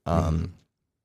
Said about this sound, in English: Yeah, I'm burping. Trying not to burp into the mic.